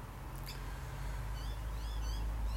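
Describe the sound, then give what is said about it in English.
Faint birdsong early on a February Saturday morning at 6:18 a.m., a few thin, high chirps and trills scattered over a steady low background rumble, with almost no traffic and no one talking. “Almost no traffic. Lots and lots of birdsong.”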